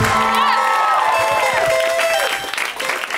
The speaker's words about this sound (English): Thanks, you guys, for that just applause that you did on your own. I appreciate that so much.